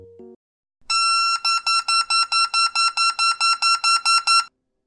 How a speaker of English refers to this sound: That was a Beep Baseball right after pulling its pin. This week's focus topic is basically that ball and other equipment needed for the game and how it is all made in Denver, Colorado.